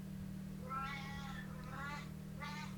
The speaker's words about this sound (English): Did you guys hear that? Oh yeah. That is my 19-year-old cat.